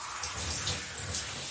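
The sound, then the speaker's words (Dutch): Steady shower spray hisses continuously, a dense rain-like rush of water with slight surges in brightness and no voices. “En dan ga ik in de douche.”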